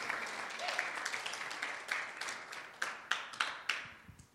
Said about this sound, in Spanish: Un aplauso para la abuelita del movimiento.